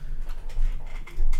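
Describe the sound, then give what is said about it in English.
Scattered keyboard clicks tap out at an uneven pace, a handful of light keystrokes over a steady low background rumble, with no voices. “I like that clicking. I like hearing a bit of action in the podcast.”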